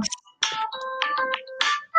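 A phone ringtone from an incoming call on an unmuted phone plays a short electronic melody of bright chiming notes with sustained tones, fairly loud, with no one speaking over it.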